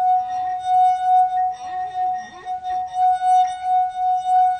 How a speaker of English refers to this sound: just rest your finger on the rim and rub it around. Okay, so this is one of those well-known party tricks where you play the wine glass